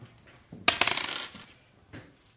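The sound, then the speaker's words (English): A hard plastic eight-sided die (d8), rolled for a long spear's damage, drops onto a table with a sharp clack, then rattles and tumbles in a quick run of diminishing clicks before settling. Fairly crisp, with no talking. “Long spear 1d8. Oh, great, the one dice I don't have handy right now.”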